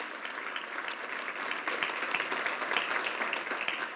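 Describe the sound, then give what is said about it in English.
An audience applauds the serve team with dense, sustained hand clapping for several seconds, a steady crackling wash of many hands that swells slightly louder midway and keeps going without a break. “Come on, give our serve team a big hand clap.”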